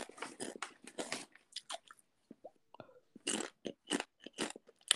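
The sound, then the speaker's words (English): Loud crunching of salt and vinegar potato chips, with bursts of bites and chewing in irregular clusters separated by brief pauses, no talking. “What are you crunching on? Chips, bro. Like vinegar and salt chips?”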